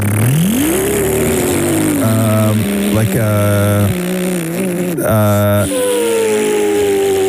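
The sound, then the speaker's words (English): A person makes a buzzing, revving engine noise with their mouth, the pitch rising and falling in several bursts over a few seconds, loud. “You know, you're sort of like making a noise and the mouth noise. That is like a... like an engine of some sorts?”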